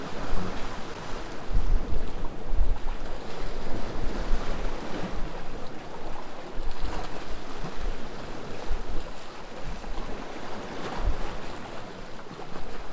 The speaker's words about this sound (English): Fade into the ocean